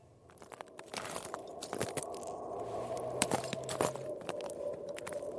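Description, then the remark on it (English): Slow, deliberate footsteps crunching across frozen ice in the middle of Lake Inari, in the Arctic Circle in the far north of Finland, in the late afternoon. Each step is a sharp, brittle crackle over a steady low hiss. No voices, just the irregular rhythm of careful treading. “I'm treading gingerly across the frozen ice on the middle of Lake Inari.”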